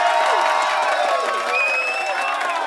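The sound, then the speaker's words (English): An audience cheers for quiz contestants, whooping loudly, many overlapping voices shouting at once in a sustained roar with a few high-pitched yells rising above the mass. “Now, let's give our contestants a full-throated cheer.”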